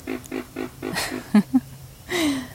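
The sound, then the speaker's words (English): Low, pig-like grunts from a pig frog calling in wetlands repeat in a quick rhythmic series, followed by two louder croaks and a longer, slightly falling call. “I still love that pig frog sound.”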